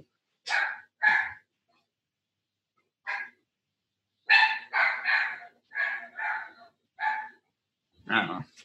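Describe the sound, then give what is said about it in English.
A dog barks excitedly at a house as somebody drops something off outside, in a rapid string of about ten sharp, high-pitched barks, bunched into bursts with short pauses between, loud with no other sounds. “The dog is going crazy.”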